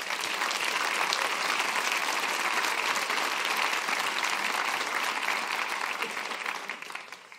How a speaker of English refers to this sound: So I could not be more pleased to introduce you to Jonathan Pennington. Would you please give him a round of applause?